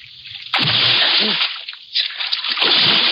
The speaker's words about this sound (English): I ran to the rail and vaulted over into the icy river.